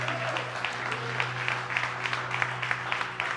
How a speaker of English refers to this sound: I'm so thankful you started clapping right then because I get to say this, but wait, there's more.